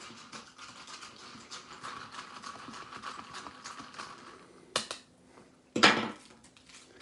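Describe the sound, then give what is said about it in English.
A spoon scrapes and stirs steadily inside a small plastic microwave cup of Velveeta shells and cheese before microwaving, a rhythmic scratching, followed by two sharp knocks or taps near the end. No one speaks. “So you just have to stir it up.”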